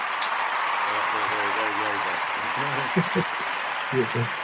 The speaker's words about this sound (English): So let's give a little bit of an applause there.